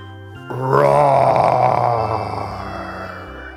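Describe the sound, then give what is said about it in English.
A person lets out a long, growling roar in imitation of a bear, starting abruptly, holding loud and rough for about two seconds, then trailing off into a lower groan. “Let's try a big bear roar.”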